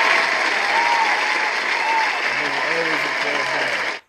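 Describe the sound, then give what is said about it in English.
A steady burst of loud clapping from a crowd lasts about four seconds, applauding wrestler Shane Strickland (Swerve) signing with AEW, with some voices rising above it near the end before it cuts off abruptly. “So we're always gonna applaud niggas getting a bag.”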